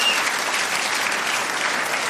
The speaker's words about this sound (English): Rita Rudner. Comedy coach, Rita Rudner. My God, lengthy applause for Rita Rudner.